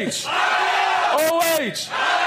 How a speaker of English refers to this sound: before we get started with our very serious questions, do you want to just lead the crowd in an OHIO real quick? All right, here we go. OHIO!